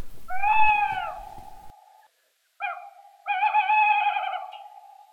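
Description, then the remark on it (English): A tawny owl hoots in still night air in a churchyard at 3 o'clock in the morning in early May: a long, clear note, a brief pause, a short hoot, then a drawn-out quavering one, with no other sounds around it. “It's 3 o'clock in the morning, in early May, and a tawny owl is calling.”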